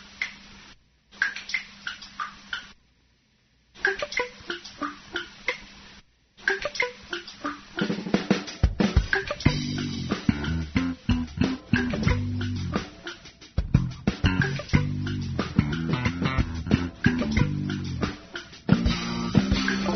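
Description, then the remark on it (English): Water dripping from a faucet, used by a man to make music, plinks in a sparse, tick-like rhythm with brief pauses, then builds into a denser, louder musical groove of layered drips and tones. No one speaks. “Guy takes a dripping water faucet and he makes music.”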